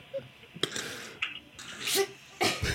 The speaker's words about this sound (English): Sorry, I just had to cough.